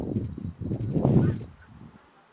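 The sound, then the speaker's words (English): A flock of geese honks in overlapping calls as it flies in outdoors in Las Vegas under clouds with a rainbow, a busy cluster of nasal honks that swells in the middle and then fades as the birds pass. “A flock of geese just now flew in. I'll be quiet. Maybe you can hear them.”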